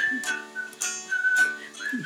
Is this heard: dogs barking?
no